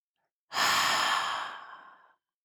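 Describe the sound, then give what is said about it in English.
A single long, breathy exhale after a deep breath in, fairly loud, starting abruptly and fading gradually over about a second and a half, like a slow sigh. No talking. “So thinking of that one thing, let's take a deep breath in, holding that intention, that thought, that wisdom, and breathing out.”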